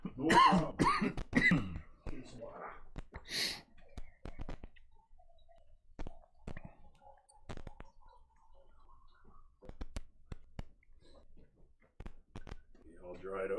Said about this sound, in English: I just got a cough here, so excuse me.